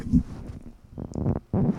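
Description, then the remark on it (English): A buzzy fart blown right into a microphone held to a man's bottom through track pants, sounding in a few low, sputtering bursts with brief gaps between them, fairly loud and with no talking. “Did you hear me fart into the microphone?”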